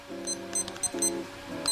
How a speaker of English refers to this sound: Okay, let me set my timer for 4 minutes.